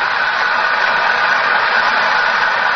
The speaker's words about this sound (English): Listen to the applause. Yes, undoubtedly she'll sing an encore.